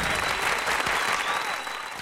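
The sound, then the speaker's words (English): A steady burst of applause, dense overlapping claps forming a continuous crackling wash that holds at an even, moderate loudness for about two seconds with no voices. “I applaud you, good sirs.”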